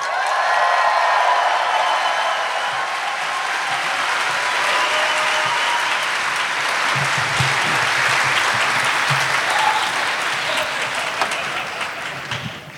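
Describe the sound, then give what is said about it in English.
A crowd applauds steadily for about thirteen seconds, a dense, even wash of clapping that holds at full strength throughout before tapering slightly at the very end, with no talking over it, as a band are welcomed to the stage at a live show. “So, ladies and gentlemen, please help me welcome to the stage my good friends, Misters ….”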